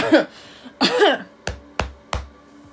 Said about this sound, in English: A fake cough.